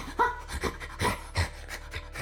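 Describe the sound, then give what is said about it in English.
A voice imitates the rapid, fevered panting of a half-man, half-hyena creature: a quick run of breathy huffs, about eight short bursts in two seconds, moderately loud with no other sounds. “Sort of like you just hear his like fevered panting.”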